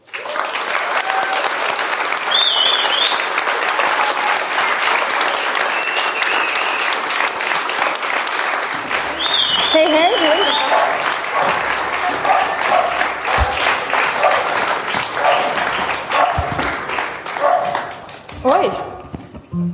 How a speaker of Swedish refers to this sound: Och, så jag tänkte be publiken ge en stor applåd för … och ….